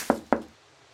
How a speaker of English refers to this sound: Ready? Knock away.